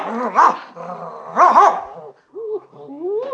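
A dog barks in two separate bursts about a second apart, each a quick doubled yelp, followed by lower whining and growly vocal sounds.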